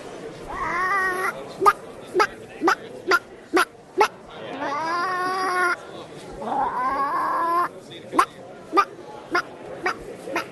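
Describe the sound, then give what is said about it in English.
A rooster crows three times, each call long and strained with a rising-then-falling pitch, fairly loud, while sharp clicking taps repeat steadily in between. “So Apache is a ginger rooster.”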